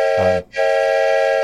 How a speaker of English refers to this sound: Yes, and there's the whistle for that.